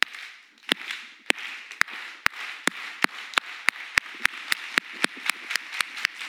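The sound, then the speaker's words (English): A crowd claps together: sharp, crisp claps land on a steady beat that quickens slightly, over a dense wash of many hands clapping. No one speaks. “When we hear something we like that resonates with our spirit, that feels like it uplifts, we like it, we don't clap like this. We clap like this.”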